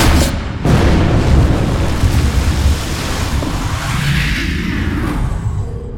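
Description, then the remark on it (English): A deep, continuous roar of icy seawater rushing through access pipes at 16,000 pounds per square inch, flooding a launch chamber, heavy and rumbling, with a sudden surge early on and a low whooshing swell as the vessel Zephyr is shot outward into the dark water of a trench. “The icy water tore through the access pipes, violently flooding the launch chamber, shooting the Zephyr outward in the dark water of the trench.”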